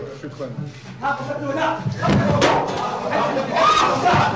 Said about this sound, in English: Yes, folks, those are shoes being thrown at Bush. Those ain't shots popping off. Those are clogs clicking shoes, together. Shoes, straight up shoes.